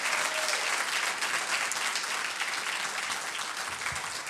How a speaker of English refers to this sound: I want to see how many of you really love Jesus. Give him another hand clap of praise. Come on.